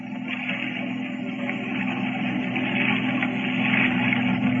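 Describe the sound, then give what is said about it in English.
A motorboat's steady engine drone with a low, throbbing hum grows gradually louder as the boat approaches. No one speaks over the continuous rumble. “It's a boat.”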